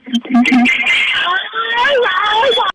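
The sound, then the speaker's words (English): Strange warbling electronic tones come through a caller's thin, tinny phone line, sliding up and down in pitch almost continuously for a few seconds, loud, with a garbled, voice-like quality. “Now, you know what's interesting about this, Gerry, is this caller phone and very weird noises.”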